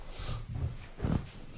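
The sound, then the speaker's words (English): A dog snorts: a couple of short, rough nasal bursts, the last one louder, with no talking over them. “There goes our Inazuka dog.”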